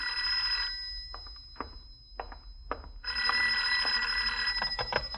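A telephone bell rings in a study in a radio drama, in two long, bright, jangling bursts separated by a short pause with a few faint knocks, loud and alone with no talking.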